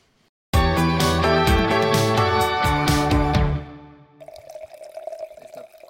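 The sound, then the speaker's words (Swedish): Portuguese Periquita red wine is poured into a glass, a loud gurgling, glugging stream lasting about three seconds, then it stops and only faint, quiet background noise remains. “Då hällde Albin upp då lite periquita.”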